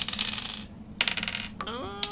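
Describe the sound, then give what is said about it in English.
Dice clatter across a hard table in two rattling bursts, then a single die spins and rings briefly as it settles. Fairly loud, with no voices. “I'm going to roll my one dice.”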